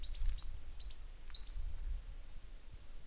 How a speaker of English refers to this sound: I can hear the bird up there.